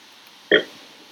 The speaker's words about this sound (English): Y'all can tell she was taking that last gulp. You heard it.